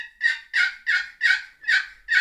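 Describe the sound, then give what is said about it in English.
A box call, struck very softly, plays a soft series of turkey yelps: about seven evenly spaced raspy notes in a steady rhythm, moderately quiet, with no talking. “Very soft, just hitting it. I use a box call a totally different way.”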